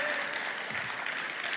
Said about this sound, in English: And everybody, this is Dan Stecher. Dan Stecher is in charge of our worship team, so he's scheduling. Yes, you can clap for Dan.